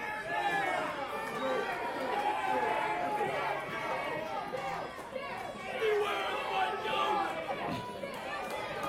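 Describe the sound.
A large arena crowd roars and chatters continuously, many overlapping voices forming a loud, dense wall of noise that swells and dips slightly throughout.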